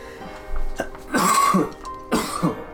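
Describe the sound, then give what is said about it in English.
Two harsh, close-up coughs a little under a second apart, each a raspy burst with some throat-clearing quality, heard alone without any talking. “When you cough, do you still have to call no COVID?”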